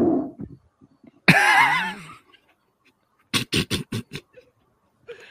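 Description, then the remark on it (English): A loud, buzzy fart transmitted through a long rubber hose, lasting about a second, its pitch wobbling up and down with a hollow, tube-like tone, followed shortly by a quick run of five short, sharp bursts. “I'm more interested to hear how that sounds at the other end. Will it be higher or deeper? Going through a long rubber hose.”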